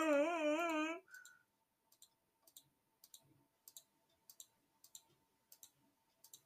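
computer mouse clicking

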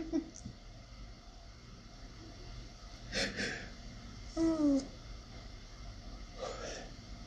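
yawn

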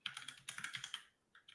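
computer keyboard typing

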